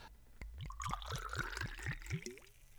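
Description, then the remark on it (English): Liquid glugs rhythmically out of a bottle as a drink is poured: about eight quick, gurgling pulses in steady succession, fairly loud, with no one speaking. “That's a good pour. The glug. Proper glug.”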